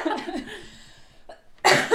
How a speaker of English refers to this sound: Jesus Christ. So, so sorry. Oh my God. You know when you're like trying not to cough, but like. Mm-hmm. Now it's like even worse.